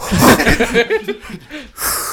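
Heavy breathing into a microphone, mixed with some voiced, chuckle-like sounds, ending in a loud, rushing exhale that blasts the mic.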